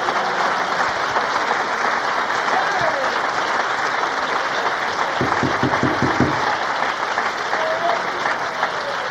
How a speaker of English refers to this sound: And why don't you give God a hand clap of praise?